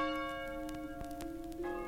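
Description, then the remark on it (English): Bells ring with a sustained, resonant hum and a few sharper clanging strikes layered on top, steady and moderately quiet, with no voices. “Ring the bells!”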